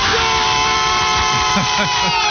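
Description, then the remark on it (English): Several hosts let out a loud group war cry together into their microphones after a countdown to three, sustained for a couple of seconds, pitches swooping up and down over a steady electrical hum. “That was a loud yell for all of us.”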